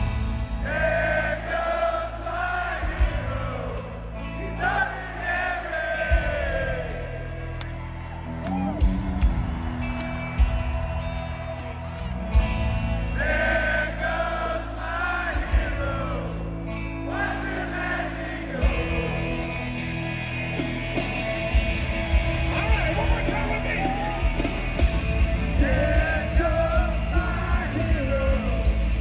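A large concert crowd sings a song together in loud, continuous unison, their massed voices rising and falling with the melody over a roaring background of cheers.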